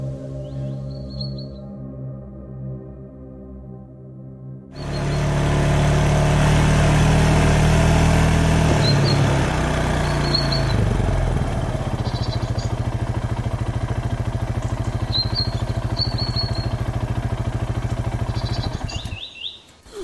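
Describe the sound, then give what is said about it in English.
A side-by-side utility vehicle's engine hums low, then surges into a loud, steady roar that holds for about fifteen seconds before cutting off abruptly. Faint bird chirps come and go above it. “Here, take the keys to the side-by-side.”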